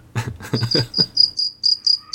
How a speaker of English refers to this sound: Oh, that's nice. Crickets.